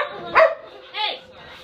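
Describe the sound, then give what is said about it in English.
A dog barks twice, about half a second apart, each bark short and fairly loud, over a low murmur of background voices. “Best part of the podcast, dogs.”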